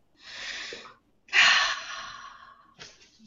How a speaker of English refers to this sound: Breathing.